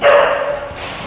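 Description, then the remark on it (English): Dogs barking in a brief, loud burst at the Dog Run in Manhattan, New York City's only pool for dogs, the yaps blurring together over a dense noisy background; no one speaks. “Every dog in the pool.”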